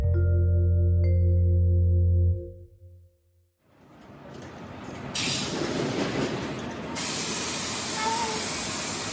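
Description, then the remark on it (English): A bus pulls up at the curb in front of La Esperanza Market in Los Banos: a deep, steady engine drone fades out, then loud, sustained hissing of air brakes swells in, with sharper bursts of hiss partway through. No one speaks. “A bus pulls up in front of La Esperanza Market in Los Banos.”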